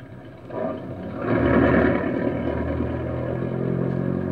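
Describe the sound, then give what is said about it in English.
A stolen car's engine idles with a low, steady rumble, then revs up and grows louder as the car is driven inside, settling into a sustained drone. “I got a hot car and you can't hear the bell. Come on, let's get this thing inside.”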